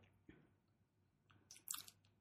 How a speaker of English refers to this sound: I'm going to need a few sips.